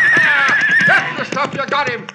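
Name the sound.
horse neighing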